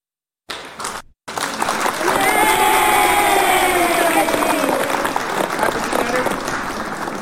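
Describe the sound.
A crowd bursts into loud, sustained applause with cheering and whooping voices rising over dense clapping, continuing steadily for several seconds after a brief start and pause.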